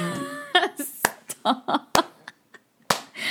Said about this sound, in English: Cesar Chavez clap.